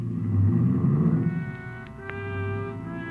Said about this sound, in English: Ibarra was grim as he climbed in his car and drove off fast.